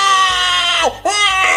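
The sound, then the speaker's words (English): An adult voice mimics a woman screaming like a child: a loud, sustained, shrill, whiny high-pitched wail that bends downward, breaks off briefly, then rises into a second drawn-out cry, alone. “She's literally like screaming like my kid does with like...”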